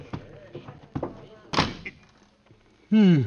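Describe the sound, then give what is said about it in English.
A few soft knocks and shuffles lead into a supply closet door swinging shut with a solid thunk, followed by a brief vocal exclamation near the end. “Here's a door. Oh, for supply closet. Well, I'll have to squeeze in.”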